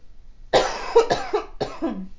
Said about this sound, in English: I'm about to have a coughing attack, I feel.